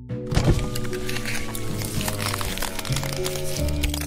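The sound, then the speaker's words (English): A car's power window motor hums steadily as it strains downward after the button is pressed, accompanied by a thick, irregular crackling and snapping of ice caught between the window and frame, with a sharp thunk at the start. “I pressed the button and heard the ice crackle between the window and frame as it labored downward.”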